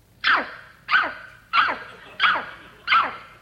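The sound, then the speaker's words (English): A person imitates a dog barking on command, giving five evenly spaced, loud woof-like barks about half a second apart, with no other talk. “Bark like a dog.”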